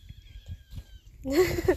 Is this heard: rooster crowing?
no